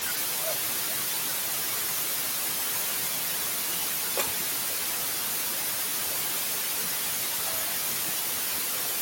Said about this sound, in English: Any chance you have wired ones? No, we're getting a lot of interference here.